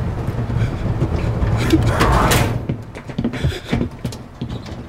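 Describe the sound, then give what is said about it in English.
A door swings shut with a rushing sweep and a dull thud, followed by a few softer knocks, all over a steady low rumble like a moving vehicle. “Close the door.”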